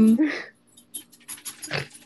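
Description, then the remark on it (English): A dog gives a short whine, then soft rustling and a muffled thump as it jumps off a bed and lands, followed by quick, breathy panting. “Oh, my dog just jumped off my bed.”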